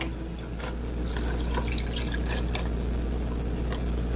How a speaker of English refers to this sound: So we're gonna give that a mix. And we're gonna pour this in our glass.